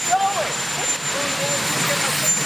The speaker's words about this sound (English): people got a little suspicious when a helicopter landed on the lawn. Coffee in hand, the president headed for the chopper.